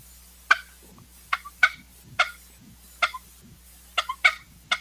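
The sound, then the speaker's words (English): A basic tube turkey call imitates a hen's cluck: about eight sharp, short clucks in an uneven rhythm, fairly loud, over a faint low hum with no talking. “I'm not sure how well it'll come through on the microphone here, but with the tube call, you can do a basic like hen cluck.”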